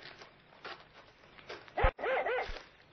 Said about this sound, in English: Here, what's the matter with your dog? He seems to have found something ahead there. Well, it's not like him to get that excited. What's the matter with him?